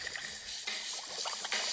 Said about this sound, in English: Oh, I know those bubbles.